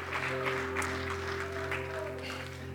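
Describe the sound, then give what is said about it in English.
A church audience claps steadily in a dense, continuous wash of applause with scattered voices calling out in praise of the Lord, while a sustained organ-like tone hums underneath throughout. “Can you give the Lord a shout of praise, a hand clap of praise tonight?”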